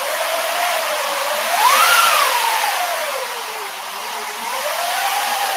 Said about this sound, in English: In the earliest days of live action film and animation, if they needed wind, they would use a wind machine. And you can go fast and you can go slow, or you can speed up and create a gust of wind.